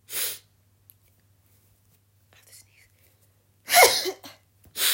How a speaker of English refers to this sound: Ooh, excuse me, sorry. I'm gonna put in a timestamp, like, sorry about the sneeze.